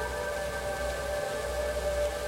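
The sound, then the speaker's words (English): Whale vocalization: long, steady tonal moans holding at a fixed pitch over a constant wash of low rumble and hiss, unbroken for the whole stretch, with no one talking. “But the whales are getting personal.”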